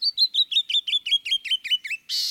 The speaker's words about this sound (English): But it's the brilliant song of the canyon wren that most people remember best, a song perfectly suited to echo across the stony realms it calls home.